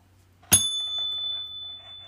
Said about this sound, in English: Okay, not the cable scratching on the box here, but the ding bell. I got a little ding bell that I'm going to incorporate, I guess. I guess when I change subjects, I'm going to hit the ding bell.